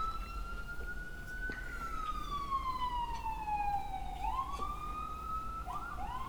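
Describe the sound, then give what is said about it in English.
An ambulance siren wails, its pitch sliding slowly down over several seconds and then swooping back up, over a low rumble of traffic, with no talking. “Ambulance.”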